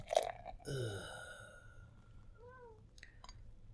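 A sharp opening burst as the top of a beer is popped, then a fizzy, rushing pour of the beer into a glass with a ringing tone that fades over a second, followed by a few soft gurgles.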